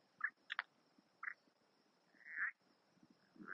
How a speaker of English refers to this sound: I think it's frogs. Or it's a dude making a really creepy noise, dude. How fucked up would that be? You know, you're just walking around at night. Some dude's hanging out by a lake making weird noises. What the fuck, dude? What is that?